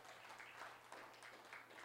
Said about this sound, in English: All the dads in the room. There you go. Awesome. All right, you can clap for them. That's great.